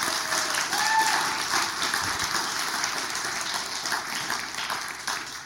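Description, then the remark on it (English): The audience of North Bullitt Christian Church claps steadily in a dense round of applause thanking its church leaders for their service, a bright, even wash of many hands lasting several seconds without fading much. “And so if you guys would put your hands together for them, give them a round of applause.”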